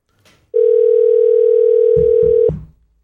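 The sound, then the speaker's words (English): A telephone dial tone as an outgoing call is placed to a guest: one loud, steady mid-pitched hum lasting about two seconds, with a few soft low thumps near the end before it cuts off abruptly. “We should call him. He can yell at me in the chat. I think we should call him.”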